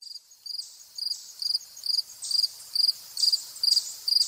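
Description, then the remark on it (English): Fall field crickets chirp in a steady, regular rhythm of short, high-pitched trilled pulses, about two per second, at a nature center in Killingworth, Connecticut, in August, with no voices. “Fall field crickets in August. They are joined by a chipmunk and a blue jay at the Platt Nature Center in Killingworth, Connecticut.”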